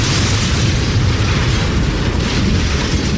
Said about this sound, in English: the air was rent by the sound of screeching tin as the shed was ripped apart.